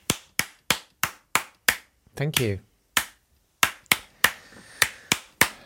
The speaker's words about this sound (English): I'll still be clapping at the beginning of every podcast, even though I might have to do it under my desk if I'm in a meeting. That's not going to look or sound weird at all. Nothing will stop my applause. Here it is.